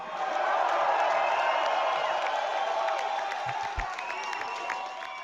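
audience cheering and applauding

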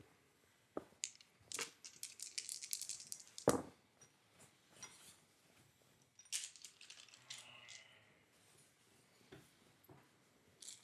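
dice rattling

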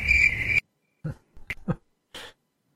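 crickets chirping

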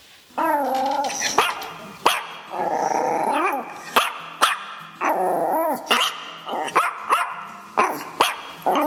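dog barking and growling

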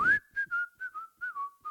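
person whistling

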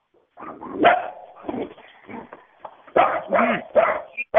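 dog barking

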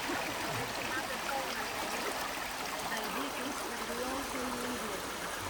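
flowing river water

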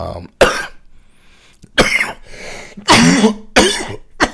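smoker's cough

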